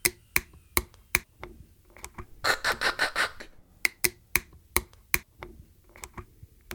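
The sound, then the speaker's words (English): Sharp plastic clicks from the tines of a water bottle's cap snapping open as the bottle is opened, sounding in a steady series, with a quick rattling burst of rapid clicks midway. No one speaks. “There are tines that actually go tick, tick, tick, tick, tick, and pop open as you're opening that bottle.”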